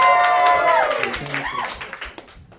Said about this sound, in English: Yay. Come on, a little bit more cheer.